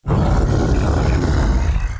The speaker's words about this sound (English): The Sphinx opened his mouth and startled her with a roar that silenced all noise in the prisoner's courtyard behind her.